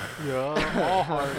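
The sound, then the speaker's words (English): A voice imitates a man's heavy, wheezy breathing: a couple of loud, raspy inhales and exhales with a groaning, voiced edge, one running into the next. “You just hear him breathing and shit.”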